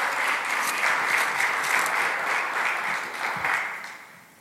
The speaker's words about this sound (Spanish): Dan un aplauso al pastor Carlos Paniagua, por favor.